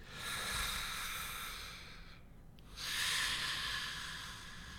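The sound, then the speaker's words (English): Soft, steady hissing breath through clenched teeth of a sleeper curled up and lying still, two long airy exhalations separated by a brief pause, quiet with no voices. “Presently, his breath was hissing softly through his clenched teeth, but he lay still as a stone.”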